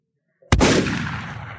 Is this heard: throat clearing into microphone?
no